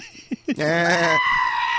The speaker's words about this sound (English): What was that goat laugh?